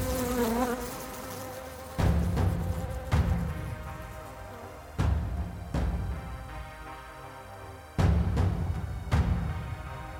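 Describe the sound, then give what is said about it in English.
A dense swarm of bees buzzes continuously, with sudden louder surges every second or two as the droning rises and falls. No voices are heard. “The ends of her fingers, like sharpened barbs, reached out to me, and as I began to scream, a thousand of my bees swarmed in unison from her body and into my mouth, and made a home.”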